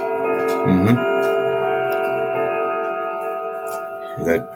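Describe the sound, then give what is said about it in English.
A clock chime rings with steady, sustained bell tones that hang throughout, with two fuller strikes near the start and end and faint murmuring underneath. “Hear the chiming of that clock.”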